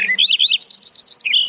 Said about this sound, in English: Look up in the sky this time of year, or better yet, listen up, and you'll surely see and hear great flocks of birds on their long journey south here in the Northern Hemisphere.